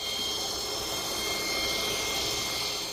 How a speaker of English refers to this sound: Here's another audio clip. We believe this is a small vessel with a large outboard.